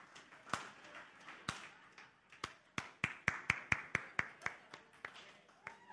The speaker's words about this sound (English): All right, four, slow clap. That was a slow, that was bad.